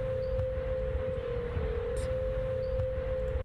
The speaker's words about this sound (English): Recent construction on the Golden Gate Bridge in California made it the world's largest tuning fork, emitting an eerie sound when conditions are windy.